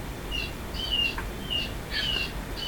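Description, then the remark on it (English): Bright, high bird chirps repeat in short bursts roughly every half second, clear against a low background rumble, with no one speaking. “Is it a bird?”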